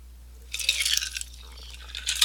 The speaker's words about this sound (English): Sorry. My glass was empty. Yeah, well, my ears are full of that noise too. It's just the ice in the glass.